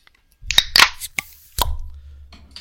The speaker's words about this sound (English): Well, all right, let's crack them open, boys. Yep, sweet.